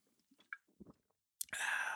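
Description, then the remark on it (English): Someone sips hot tea: a few soft mouth clicks and smacks, then a loud, airy slurp that draws in steadily for about half a second. “Getting a little sip of some tea here.”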